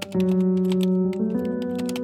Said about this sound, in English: As he turned to switch off the lights, he glanced to his left and saw a small light on one of the workstations. The audible sound of a keyboard's clickety-clack indicated a fellow colleague had the same fate as him that night.